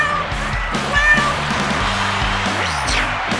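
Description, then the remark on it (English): A cat, Bucky, lets out a drawn-out, wavering meow near the end, heard over a steady, loud bed of rhythmic background music with a thumping bass line. “Now the star of Life with Bucky, her royal Buckiness, the world's most amazing cat, Bucky.”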